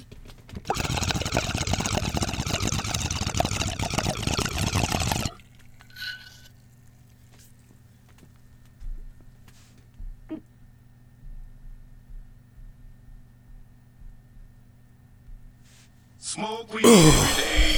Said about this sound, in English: So without further ado, we're going to take that bong hit. And like I said in previous episodes, if you hear coughing, this show is primarily fueled by marijuana.